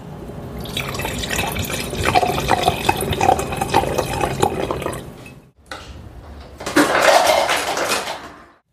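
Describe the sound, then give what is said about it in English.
Water is poured into a glass in a steady, splashing stream for several seconds, stops briefly, then a second shorter pour follows, fairly loud, with no voices. “Water's fine for me.”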